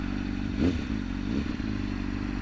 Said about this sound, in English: He stopped at a red light. Yeah. He's revving his engine. Is he wearing a GoPro? Yeah. So it's a motorcycle cop.